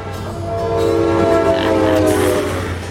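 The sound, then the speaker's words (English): A steam train rumbles steadily along steel track while its loud, sustained whistle blares over it, swelling and holding for a couple of seconds. “Big trains rolling down the cold steel track.”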